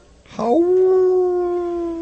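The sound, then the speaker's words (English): A person imitates a dog's howl for a radio show's call-in howler line: one loud howl that slides up quickly, then holds a long steady wailing note for nearly two seconds, with no talking around it. “You want to give us a howl”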